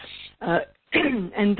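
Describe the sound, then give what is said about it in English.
A person clears their throat, with a few rough, voiced bursts in quick succession separated by brief pauses, fairly loud and with no other sounds around it. “Sorry for clearing my throat.”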